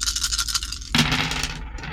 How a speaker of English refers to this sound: Okay, fine. I will roll my dice with the 4 setback